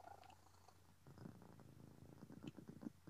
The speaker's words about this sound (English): So let's pray, and I hope you can hear me over a purring pussycat.